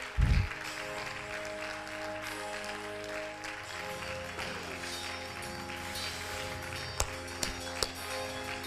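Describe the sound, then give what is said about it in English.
An audience claps their hands in a steady, dense wash of applause over sustained keyboard chords, opening with a low thump and ending with a few sharper claps standing out. “Clap your hands.”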